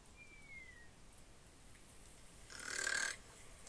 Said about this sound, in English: Admire the beautiful noise of snoring. Beautiful sound of sleeping is amazing.